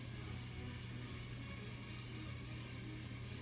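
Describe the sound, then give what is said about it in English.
Small RC cars race around a track, their motors blending into a steady, buzzing whine over a low hum. The sound stays loud and continuous, with no voices. “And they're sliding through the corners. Spinning around.”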